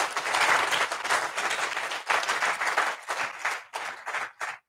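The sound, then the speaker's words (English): A crowd gives themselves a round of applause, steady, dense, sustained clapping that thins into scattered claps near the end before stopping. No one speaks over it. “You know, everybody here, you know, give yourselves a huge round of applause.”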